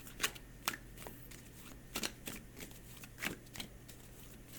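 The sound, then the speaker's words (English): A deck of cards being shuffled, with quick papery riffles and soft flicks repeating in uneven bursts over a low steady hum, no voices. “Think it to the divine and say, stop shuffling”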